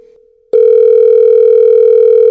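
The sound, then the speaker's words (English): A telephone line tone on an outgoing call to a Nando's restaurant: after a faint, quieter tone, a loud, steady electronic hum cuts in abruptly and holds unbroken. No one speaks. “You're calling Nando's restaurant.”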